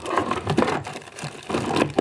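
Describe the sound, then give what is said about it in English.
Dry, crackly rustling of paper slips bearing written lists being shuffled around in a bowl, a continuous scratchy shuffle with a few louder crinkling bursts and a brief lull midway, with no voices. “I've written my lists on bits of paper, and I've put them into these two bowls.”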